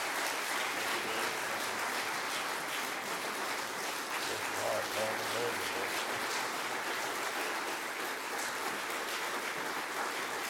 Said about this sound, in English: Would you give him a gigantic, gigantic hand clap?